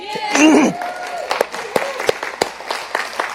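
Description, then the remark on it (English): A church audience breaks into scattered applause, a hand clap of thanks to Jesus, with sharp hand claps popping irregularly over a murmur of voices and a brief vocal exclamation early on. “And I just wanted to do a hand clap and say thank you, Jesus, for bringing us together.”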